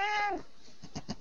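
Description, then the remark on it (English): A female pet cat lets out one short meow that slides downward in pitch, followed by a few soft, muffled knocks and rustles. “That would be my cat.”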